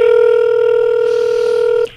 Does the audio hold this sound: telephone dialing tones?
yes